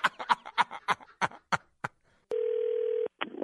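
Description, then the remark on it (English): A steady electronic telephone tone sounds loud for under a second as a call back is placed, following a stretch of rapid, choppy bursts, with a brief voice-like sound right after the tone cuts off. “Call him back”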